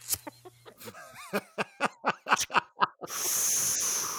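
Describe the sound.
A voice imitates a vacuum cleaner: a run of short, rhythmic breathy vocal bursts, then a loud, steady, airy hiss held for about a second.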